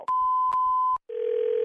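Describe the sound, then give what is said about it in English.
A telephone dial tone after a hang-up: a steady electronic hum broken by three sharp clicks, a brief silence, then a lower continuous tone with a faint hiss. No one speaks. “Why did you hang up on me?”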